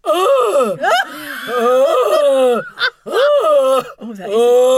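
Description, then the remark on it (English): A voice imitates the noise made when scared instead of a high-pitched scream: a strained, low, warbling moan, several drawn-out wails that slide up and down in pitch, broken by short gasps, loud throughout. “All we can do, if I've ever been mugged or anything like that, or I've been scared, I've never been able to do a high-pitched, proper lady scream. No, I make this noise that goes like this.”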